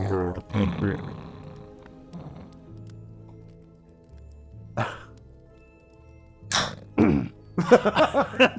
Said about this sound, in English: Like a badly disguised fart.